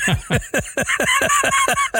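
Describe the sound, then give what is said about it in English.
A voice imitates a duck, letting out about eight quick, nasal quacks in a steady rhythm, loud, with no talking around them. “Ducks.”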